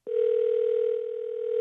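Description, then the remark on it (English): A telephone ringback tone heard while a call connects: one steady, continuous electronic hum lasting well over a second, clear and fairly loud, with no voices. “Comes the dial tone. We'll get five or six of those, and then we get into the voicemail.”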